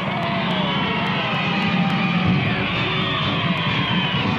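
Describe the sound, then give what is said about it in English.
A large parade crowd along Fifth Avenue in New York roars and cheers continuously at a welcome-home parade, a dense wash of overlapping shouts and voices with scattered whoops rising above the steady din throughout. “Down Fifth Avenue, through immense cheering crowds.”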